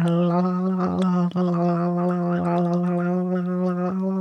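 Someone drumming on a fish that jumped out of its bowl and lies on a counter: a few irregular slapping taps over a steady, low, buzzing drone that sounds almost like gargling, with no voices.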